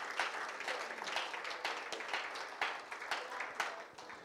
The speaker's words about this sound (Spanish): Dele el aplauso al Señor Jesucristo, que es el único que lo merece.